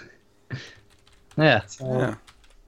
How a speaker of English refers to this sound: Apologies for the sound of my typing there over the audio.